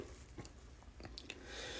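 A person takes a quiet sip of a drink during a pause while reading a book aloud, with a few soft wet mouth clicks and a faint swallow over low background hiss. Nobody speaks.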